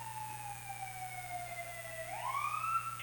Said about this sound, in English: Well, I can't hear the dialogue because there's a cop car outside, but...